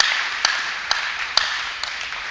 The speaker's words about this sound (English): So when you see them around, they are around. They are part of us. Clap for them.